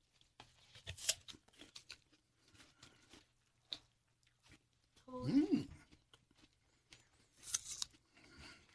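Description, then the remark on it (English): A sharp, crisp bite into a very crunchy apple, followed by steady chewing crunches, with a brief murmured voice midway and another loud crunch near the end. “This one's super crunchy.”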